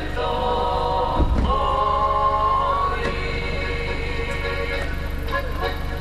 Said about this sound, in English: Near the town square of Idria, a man sells fish out of a trailer. It's a sunny day, and a few of his customers hang around as their cars idle. A stereo blasts Slovenian folk music.